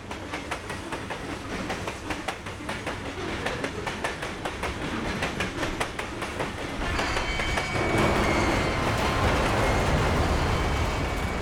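A freight train rolls along the rails with a steady clickety-clack of wheels, building into a louder, denser rumbling roar as it draws near. No voices are heard.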